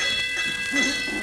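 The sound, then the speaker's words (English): A ship's bell rings three times with bright, sustained metallic tones that hang steadily through the moment, fairly loud, with a faint low murmur underneath. “Three bells already.”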